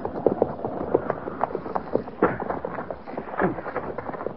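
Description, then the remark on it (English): Hooves of a patrol's horses clip-clop on hard ground in a steady, uneven patter as the patrol comes to a halt, moderately loud, with a low rumble underneath and no voices. “get that horse and put him with the pack mules.”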